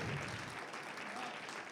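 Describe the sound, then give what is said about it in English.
An audience claps for Jesus at a night church service in a dense, steady burst of applause, loud and sustained throughout with no pauses, while a faint voice rises briefly beneath the noise. “We got one more clap in us for Jesus tonight.”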